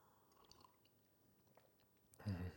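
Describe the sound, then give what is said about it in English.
A quiet stretch of faint mouth noises, then a sudden loud, wet slurp of coffee, lasting about half a second at the very end. “I love the slurp.”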